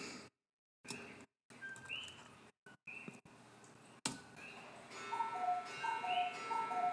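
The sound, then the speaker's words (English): A cuckoo clock ticks with sharp, steady clicks, then gives a run of short, bright two-tone calls that repeat in a quick pattern. The sound is clear, with no talking. “And there's the cuckoo clock again.”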